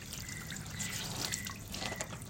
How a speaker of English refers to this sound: If you hear that, that's water. I am in my backyard and I am washing some clothes. It is like, I don't know what time, but it's late already. It's nighttime.